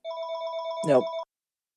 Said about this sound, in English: Hey, it's our annual podcast phone call. Yeah, you mean from out of area.